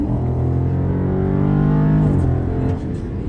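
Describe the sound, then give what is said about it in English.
A car engine roars loudly as the driver floors the accelerator, its pitch climbing steadily under full throttle, then briefly dropping as if shifting gear, continuous throughout. “Just getting in it and driving. I mean, just flooring it like this.”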